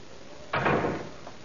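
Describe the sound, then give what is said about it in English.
A door at the bottom of the stairs closes with a single sharp thud that fades over half a second, then a faint knock follows, with no voices. “Come upstairs now. And close the door at the bottom.”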